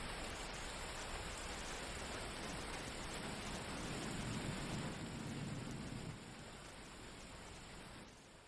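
Steady rain pours down over the city of Los Angeles in a dense, hissing wash, with a low rumble swelling briefly midway like thunder before the downpour eases slightly toward the end.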